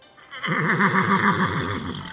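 A black horse with a golden mane, stuck in the mud a few yards away in a village, lets out one loud whinny lasting over a second, its pitch quavering rapidly up and down before trailing off, with no voices around it.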